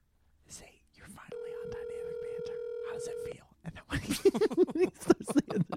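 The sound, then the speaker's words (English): A phone call goes unanswered: the line rings out with one long, steady electronic ringback tone lasting about two seconds, followed by people talking over each other. “Sounds like he's not gonna answer.”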